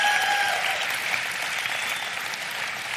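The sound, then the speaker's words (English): A crowd claps steadily in sustained applause for a performer, a dense wash of many hands at an even, fairly loud level throughout, with a few brief whistle-like tones early on and no talking. “Another applause for Justin.”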